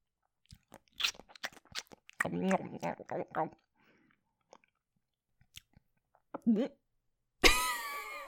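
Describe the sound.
A voice mimics a shambling mound monster chewing someone up, with wet smacking, crunching and gnashing mouth noises in uneven bursts, then a brief pause and a loud, raspy growling cry at the end.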